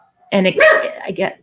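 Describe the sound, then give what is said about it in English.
A dog barks, a short cluster of two or three loud, tonal barks in quick succession, blending with a human voice at a similar pitch. “The funny part is your dog was on the same pitch as your voice. And so it sounded like you barked.”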